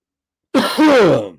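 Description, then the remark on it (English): A single loud cough into a microphone, a sharp burst followed by a rougher, throaty rasp lasting under a second, heard alone without any talking. “I just coughed in the mic.”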